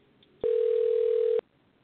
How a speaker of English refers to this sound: I hear something. I hear a phone ringing. Do you hear that, y'all?